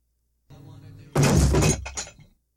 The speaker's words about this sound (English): Is it when he drops the weight? Yeah. Okay. It's when he drops the dumbbell when Rick wins the tickets for no reason